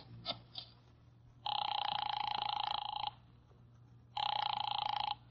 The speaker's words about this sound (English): I drove down to the document research laboratory on Vanderbilt and got such a shock that I grabbed the office phone and dialed Wolfe at once.